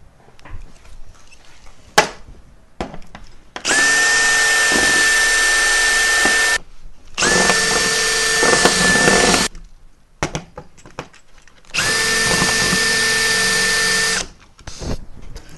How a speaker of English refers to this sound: You can see that there's rivets that hold the case of this together. So I'm going to have to drill this shit out.